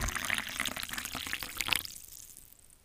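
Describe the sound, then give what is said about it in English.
A drink pours steadily into a glass, a bright splashing gurgle that rises briefly in pitch before tapering off into quiet after about two seconds. “Let's go ahead and pour this shit the fuck up, because this is going to be great.”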